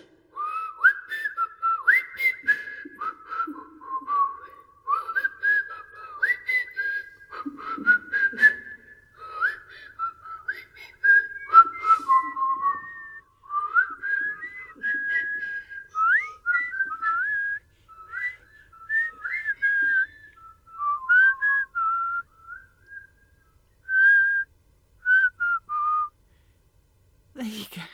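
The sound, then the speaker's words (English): Someone whistles a wandering, unsteady melody for nearly half a minute, with wobbly pitch and breathy gaps between short phrases, ending abruptly. “told you I cannot whistle for toffee.”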